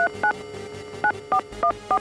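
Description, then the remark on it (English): Touch-tone phone dialing a call to Abraham Lincoln: six short, clear keypad beeps at an uneven pace, each a bright two-note tone, over a faint steady hum with no voices. “It's ringing.”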